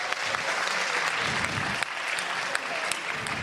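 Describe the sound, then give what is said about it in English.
Sustained audience applause for the actors, a dense wash of many hands clapping steadily at moderate loudness for several seconds, with a few sharper individual claps standing out. “Can we have a round of applause for our actors?”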